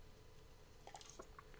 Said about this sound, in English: I have to keep taking sips of water.